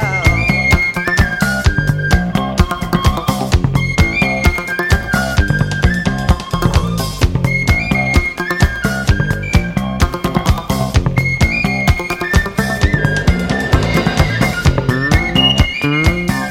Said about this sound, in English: And by the end of the solo, it almost sounds like a duet between the bass and the penny whistle. I really love the penny whistle solo.